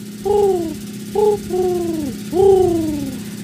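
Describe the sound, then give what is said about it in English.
A pigeon coos four times in quick succession, each a throaty, falling warble, fairly loud over a steady low background hum. “What are you on about there, pigeon?”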